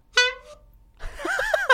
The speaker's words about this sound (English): Sad honk.